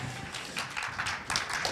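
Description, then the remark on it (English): An audience applauds as a speaker is welcomed up to give a word. It is a steady wash of many overlapping claps with brief brighter bursts, sustained at an even level for a couple of seconds with no voices. “And let's give him a big old round of applause.”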